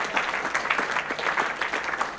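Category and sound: crowd, audience clapping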